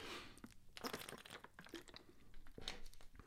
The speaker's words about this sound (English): I'm gonna take a little sip of water, guys.